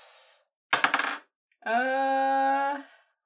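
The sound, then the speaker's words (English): A quick clatter of dice tumbling across a hard table, a half-second burst of rattling clicks, followed by a steady sustained electronic tone. No one speaks. “Oh, don't mind me, I'm just rolling some dice.”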